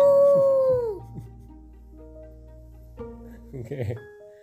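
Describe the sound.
A wolf lets out one loud, drawn-out howl that slides downward and fades after about a second, followed by quieter sustained tones and a short burst of voices.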